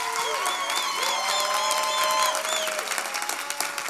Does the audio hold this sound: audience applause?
yes